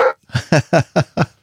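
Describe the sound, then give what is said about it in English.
A person imitates a dog barking: one short opening yelp, then five rhythmic, evenly spaced voiced barks, fairly loud, with brief silences between them. “Who let the dogs out?”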